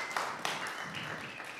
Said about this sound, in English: Yeah, clapping is great.